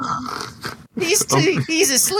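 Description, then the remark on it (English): A person imitates snoring, making a couple of drawn-out, throaty snorts broken by a brief pause, loud and voiced rather than real breathing. “he fell asleep. I did. He fell asleep.”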